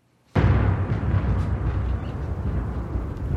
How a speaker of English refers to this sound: You hear that thunder?